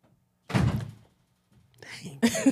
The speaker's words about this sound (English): What? You want to sit with us? Okay, close the door and you can join us.